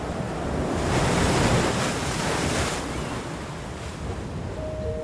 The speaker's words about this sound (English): Bright aqua waters crash against tall, ragged cliffs.